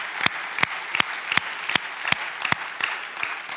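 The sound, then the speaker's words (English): An audience claps steadily, a dense wash of hand claps with a few sharper, louder claps standing out at a fairly regular rhythm. No one speaks over it. “And I want us to clap right there, because that's awesome.”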